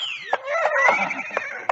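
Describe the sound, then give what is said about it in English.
A horse whinnies loudly, a long wavering neigh that slides down in pitch, with a few sharp hoof-like knocks punctuating it. “Give every man a horse he can ride, and away we go.”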